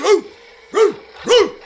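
A dog barks three times in steady succession, each bark short, sharp and fairly loud, with brief pauses between and no voices around them.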